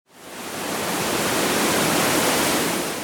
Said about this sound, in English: A waterfall is when a river runs right off a cliff or a hill